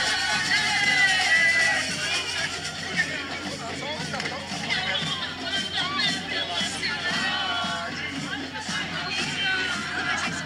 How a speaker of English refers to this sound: So you guys can hear it. And this is literally walking on Copacabana in the middle of a few hundred thousand people singing and dancing in Portuguese. It's funny because, like, if you heard it, it'd be hard to pick the crowd size.